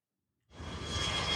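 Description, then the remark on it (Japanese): After a brief silence, a broad, steady roar of a Jetstar airplane's engines swells in and holds as the plane takes off, heard from inside the plane, loud, with a rushing hiss across the highs and a rumble underneath. “飛行機が飛びました。”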